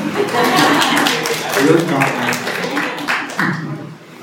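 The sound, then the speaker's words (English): An audience at a church claps steadily for a few seconds, a dense crackle of many hands with murmured voices and a bit of chuckling mixed in, fading slightly toward the end. “Clearly clap for you, so.”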